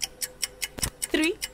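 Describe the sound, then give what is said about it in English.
A 5-second countdown timer, used for a quick-answer question game, ticks in a fast, steady rhythm, about five crisp ticks per second, broken once by a low thump, with a brief voice sound near the end. “So I have the timer ready.”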